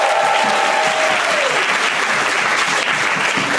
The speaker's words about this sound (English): How many folks have not seen Lucy yet? Applaud if you haven't seen Lucy.